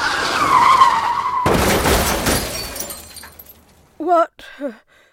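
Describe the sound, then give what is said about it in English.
Tires screech in a sustained, loud skid, then a car slams into a police car parked in the middle of the street with a heavy crash and scattering debris that fades out. A voice speaks briefly afterward. “What happened? You hit a police car.”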